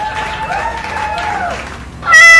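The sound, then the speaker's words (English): A cat named Mittens meows in a drawn-out, wavering cry over a hissy, crowd-like background, then lets out a sudden, much louder, sharper meow at the very end. “Mittens, how did you get back inside?”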